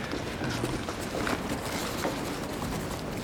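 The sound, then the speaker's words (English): Wooden chairs creak and softly knock wood against wood as people swing their chairs and collect the desks, a few scattered, muffled thumps over a steady hum of room noise in a quiet room, with no one speaking. “The creaking, the soft sort of knocking of the wood against wood as people swing their chairs and collect the desk on the way through.”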